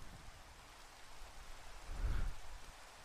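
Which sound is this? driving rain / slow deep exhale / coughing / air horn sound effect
driving rain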